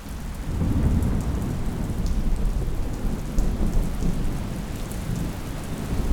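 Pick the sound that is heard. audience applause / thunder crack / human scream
thunder crack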